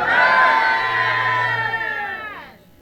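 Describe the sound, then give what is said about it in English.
A crowd of many voices shouts "amen" together in a loud, sustained roar of response that holds for about two seconds before trailing off. “To that person that we echo the loudest amen.”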